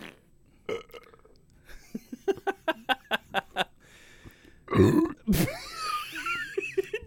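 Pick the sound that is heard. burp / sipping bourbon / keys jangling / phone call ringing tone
burp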